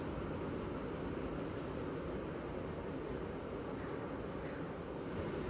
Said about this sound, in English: Step outside, listen for a moment. Listen to the waves.